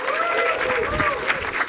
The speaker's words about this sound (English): And thank you for clapping on cue.